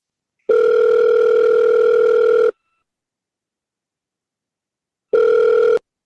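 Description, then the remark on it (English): A telephone ringback tone heard over the line on an outgoing call: a steady, buzzy two-second ring, a pause of silence, then a second ring cut short, with no voices. “It's ringing, Dean. Okay, it's ringing, yeah.”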